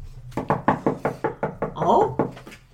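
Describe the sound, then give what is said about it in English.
Rapid knocking on a door, about eight or nine firm raps in a quick steady rhythm, then a brief voiced sound and one last knock, fairly loud. “I'll answer. The old man goes to answer the door.”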